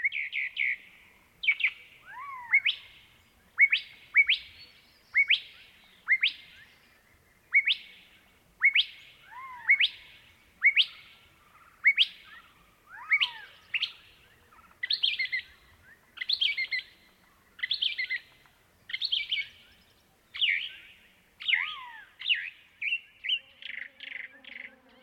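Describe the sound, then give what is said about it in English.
A bird repeats a sharp, whistled two-part call over and over, roughly once a second, bright and high-pitched with a quick upward sweep, the mimicry of a mockingbird copying a curve-billed thrasher's call. “Here's a fun recording, a mockingbird that appears to be imitating the call of the curve-billed thrasher.”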